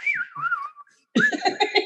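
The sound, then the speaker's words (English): A person whistles a short bird-call phrase as a theater stage cue, the kind sailors in the wings used to signal scenery changes: a clear, fairly high tone that warbles and glides downward for under a second. After a brief pause, louder overlapping voices break in. “His little bird calls.”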